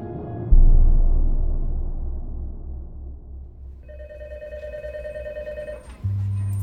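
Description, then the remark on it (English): A telephone in a tiny office by an elevator shaft rings once with a call from the LA County Sheriff's Office, a steady electronic trill lasting about two seconds over a low rumbling hum, followed by a deep buzzing tone at the end. “Back in George Mueller's tiny office by the elevator shaft, the phone rings”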